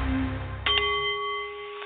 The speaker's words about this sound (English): The Nepalese Meditation Bowl is chiming, centering your mind and your delight on The Art of the CEO, the show that brings you the most fascinating and the most helpful people in the business community